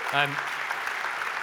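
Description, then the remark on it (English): An audience claps in a steady, dense crackle that runs through the whole moment, with a short voiced call rising briefly over it at the start, applauding a speaker after a mini preach. “Let's give her a round of applause for a mini preach.”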